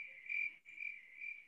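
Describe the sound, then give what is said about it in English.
Crickets chirping in a steady, high-pitched trill with a brief dip midway, moderately quiet and alone, with no voices or other sounds. “Crickets.”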